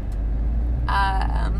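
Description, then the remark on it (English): A loud Chevy pickup truck rumbles right next to the speaker, its deep engine roar steady throughout, with a brief harsher revving whine rising partway through. “Ooh, we got a loud truck man next to me. Chevy dude.”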